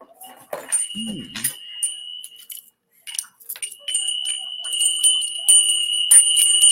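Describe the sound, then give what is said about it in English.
Small hand bells ring out in a bright, shimmering jingle, shaken in a few bursts with sustained metallic tones lingering between them, fairly loud. “Let me ring the bells. And I do have bells.”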